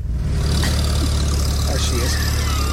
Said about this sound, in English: Get in your tractor and go.